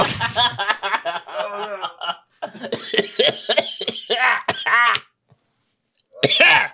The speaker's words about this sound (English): Oh, he's coughing in the soup. it'll boil out.